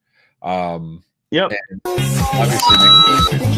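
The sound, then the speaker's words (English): A short, bright electronic coin-collect chime from a lighted, battery-driven gadget attached to a door, set off by hitting it, a steady high tone held for under a second, partly buried in a busy mix of voices and other sound. “It does the coin noise when you hit it.”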